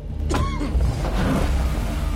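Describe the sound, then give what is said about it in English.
A car engine hums steadily, with a brief whirring mechanical sweep near the start, like a power window moving, as the vehicle pulls away. No one speaks. “Oh, that's it. Take his car.”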